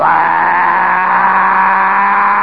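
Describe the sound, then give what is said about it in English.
A model airplane motor, clamped down on blocks and started with dry cells, roars at full throttle giving off blue smoke: a loud, steady, buzzing whine holding one constant pitch throughout, with no voices over it. “You know how model airplane motors sound. The great roar and the blue smoke.”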